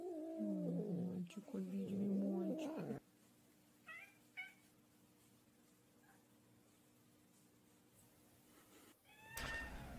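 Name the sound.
cat meowing and yowling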